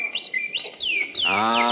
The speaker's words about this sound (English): Our canary, little Yasha. Oh, my. Doesn't little Yasha sound glorious this morning?